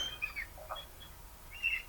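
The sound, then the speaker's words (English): Seagulls call outside, several short, faint cries scattered across a couple of seconds over a low background hum. “Seagulls. Oh, seagulls.”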